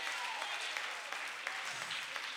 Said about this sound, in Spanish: A la vasalla, denle fuerte aplauso al que vive en esta tarde.